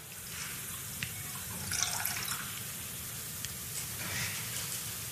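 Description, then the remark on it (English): Liquid pours steadily into a cup, a continuous trickle and splash lasting several seconds with a few small drips, fairly quiet and with no voices. “He took a cup and he poured it out.”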